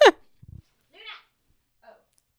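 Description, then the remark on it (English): A small Pomeranian dog lets out a sharp, high yelp, then a few quick low grumbling sounds and two softer whiny noises, with quiet gaps between them. “My dog was being really annoying.”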